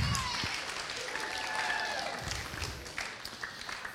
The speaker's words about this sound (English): I also want to welcome the parents. I know we have a bunch of parents from of some of our seniors that are here today as well. You know, yeah, that's okay. We can give them some applause as well.